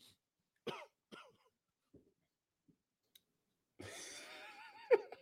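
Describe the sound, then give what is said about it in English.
A couple of sharp coughs followed by a few faint clicks, then a longer rasping throat clearing that ends in a brief loud hack. “Sorry, I had to cough for a second.”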